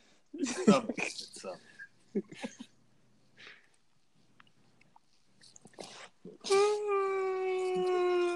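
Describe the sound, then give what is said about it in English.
A person's voice imitates the lion roar heard at the start of movies, letting out a loud, sustained, drawn-out vocal roar after some brief scattered vocal noises and rustling. “just did the lion roar at the end of the movies, or the beginning of the movies, however it goes.”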